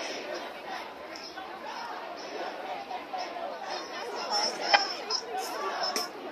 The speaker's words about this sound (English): Wow. Hell of a crowd. Wow. Wow.